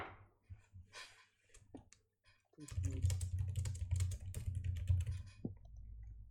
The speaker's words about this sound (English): I just need to type out a lot of shit, that's why.